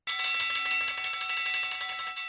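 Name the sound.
bells ringing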